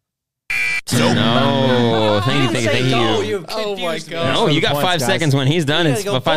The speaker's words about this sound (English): When the buzzer goes, you're right.